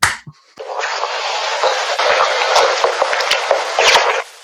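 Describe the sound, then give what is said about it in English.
A single sharp hand clap, then a voice makes a sustained wet, slurping, squishy mouth noise with crackly clicks for about three and a half seconds, imitating a blowjob as a Foley sex sound effect. “Okay, I'm going to clap my hands and then you're going to give us your blowjob sound, okay?”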